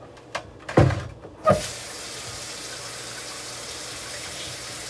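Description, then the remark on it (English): A few clunks and knocks, then water starts pouring steadily from a tap into a container, a continuous rushing hiss that fills the rest of the moment. “See, I'm not gonna put cold water in this because you do not want to do that.”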